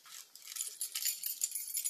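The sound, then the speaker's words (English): A quiet, bright metallic jingle of keys being shaken, with rapid irregular clinks continuing for about two seconds. No one speaks. “I got my keys here.”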